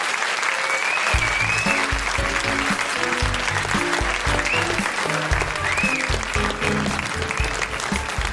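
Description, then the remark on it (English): An audience of The Guilty Feminist applauds Daryl McCormack and Emma Thompson steadily, with dense, continuous clapping throughout, while music starts underneath after the first second and carries on to the end. “Big round of applause, everyone, for Daryl McCormack and Emma Thompson.”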